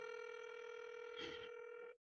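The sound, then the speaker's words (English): A phone's outgoing ringing tone sounds once, a steady buzzy electronic tone lasting about two seconds before cutting off abruptly, with a brief rustle of noise partway through. “And if he doesn't pick up this phone, think of guys we can call.”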